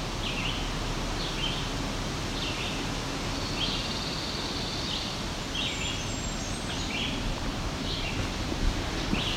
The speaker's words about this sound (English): And our Blackburnian warbler's moving a little bit, so I might take the trail that heads to where he's going and take the bluff trail.